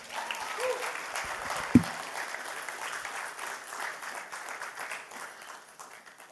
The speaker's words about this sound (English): Can y'all give her a round of applause?